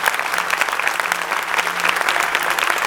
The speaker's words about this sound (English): Give God a big hand clap. Amen. Praise God.